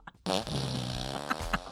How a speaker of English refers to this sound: Fart machine, baby.